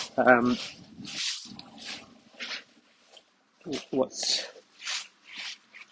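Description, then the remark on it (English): A female dog makes a string of short snuffling, huffing noises with a couple of brief whiny yelps, trying to attract attention. “She seems to be struggling to come up with a question. She just wanted to attract my attention.”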